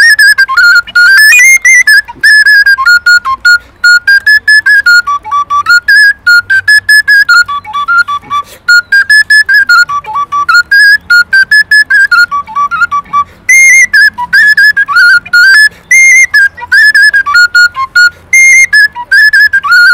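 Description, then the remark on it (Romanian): A tigva, a gourd folk wind instrument that imitates the bagpipe, plays a loud, bright melody with quick ornamented notes over a steady, bagpipe-like drone tone, alone with no talking. “Fluiere, piculine, ocarine, fluier cimpoi și un instrument care imită cimpoi se numește tigvă. Și putem să auzim și noi cum sună tigva?”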